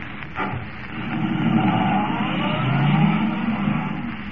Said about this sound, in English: Forcing the car to the limit of its speed, Kent races toward Linwood, convinced now that the mechanical man is more than just a myth.